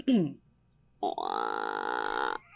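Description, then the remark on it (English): A voice imitates the awkward gurgling noise made instead of burping: a short croak, a brief pause, then a longer strained throaty sound held for more than a second, fairly loud. “But I would make these really awkward gurgling noises instead of burping.”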